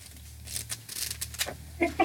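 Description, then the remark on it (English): Paper pages rustle and crinkle in a quick, irregular series of dry, hissy bursts, moderately loud, with a short squeaky sound at the very end. “You know, sorry about all my paper rustling.”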